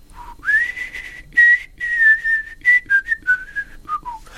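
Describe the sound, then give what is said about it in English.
A man whistles a slow, wistful melody, the notes sliding smoothly between pitches in a few connected phrases with brief pauses, clear and unaccompanied. “My dad, when he was in the garden, used to whistle … by … all the time.”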